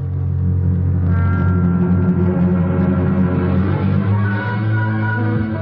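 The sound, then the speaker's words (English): A car engine rumbles steadily, a low loud drone whose pitch shifts slightly as the vehicle drives and eases along, pulling up at a brewery and warehouse, with no voices. “Later, I pull up at Pfeffer's Brewery and Warehouse.”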